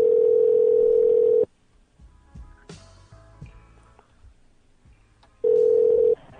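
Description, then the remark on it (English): A loud, steady telephone tone hums for about a second and a half as a call is patched through to a supervisor's office, cuts to clicks and faint line noise, then the same flat tone returns briefly before stopping. “I just gotta connect it to his office. Oh, there it goes. I'm patching the call through, sir, right now.”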